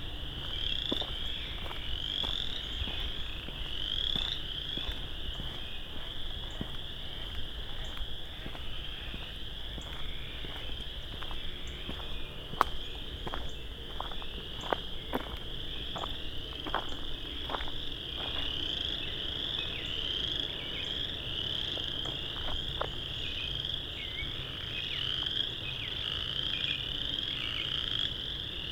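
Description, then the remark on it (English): A dense chorus of tree frogs calls continuously, shrill repeated trills layered over each other, loud, with a few sharp clicks scattered through and no voices. “I think it's a species of tree frog.”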